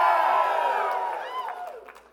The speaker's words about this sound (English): And the crowd goes wild. That was really, I said, the crowd goes wild.